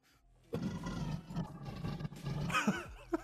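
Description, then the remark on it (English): A lion on a roof roars loudly in one long, rumbling, gravelly roar lasting a few seconds, rising into a harsher snarl near the end. No one speaks. “There's a freaking lion on the roof.”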